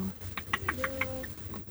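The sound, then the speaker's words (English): A hen with a bright red comb clucks in a quick run of about six short, throaty notes, then trails off against a low background hum. “Do you want to be our chicken?”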